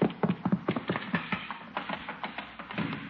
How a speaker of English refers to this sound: Hey, that sounded like a horse. Chief, who ever heard of a horse in a house?